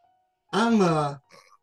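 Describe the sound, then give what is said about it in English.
A single drawn-out, throaty snore from a man who has fallen asleep, faint, falling in pitch and lasting under a second, followed by a short faint snuffle and then quiet. “It is indeed you snoring, sir.”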